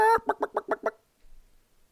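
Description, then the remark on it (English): A chicken clucks: one longer squawk followed by five quick, evenly spaced clucks, loud and distinct, then everything falls quiet. “They can't force you to inoculate a cluck cluck.”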